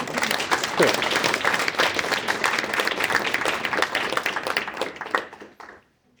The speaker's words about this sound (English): So let's clap it up